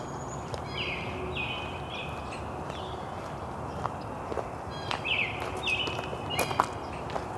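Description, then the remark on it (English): Wild birds, including a red-bellied woodpecker, a ruby-crowned kinglet, a blue jay, starlings and a northern cardinal, call outdoors in short, repeated chirping phrases, some clear, over a steady background hiss, while scattered footsteps crunch and tap intermittently. “Red-bellied woodpecker, and a ruby-crowned kinglet.”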